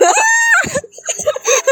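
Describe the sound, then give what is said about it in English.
A voice lets out a short, piercing imitation of a scream, high and strained for about half a second, followed by breathy, broken vocal sounds. “just starts screaming.”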